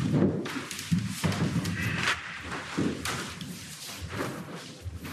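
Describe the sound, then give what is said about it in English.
A few dull, low thuds as a yoga brick is set down on the floor, soft knocks over a steady background hiss with no voices. “Quietly bring the brick to the floor.”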